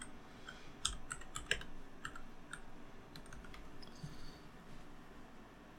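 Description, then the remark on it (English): Irregular clicks of keys being typed on a computer keyboard to search for the IMAX 1570 camera, moderately quiet, in short uneven bursts over a low background hum. “I'm glad I have a keyboard now. Yeah. It's not typing. You're typing.”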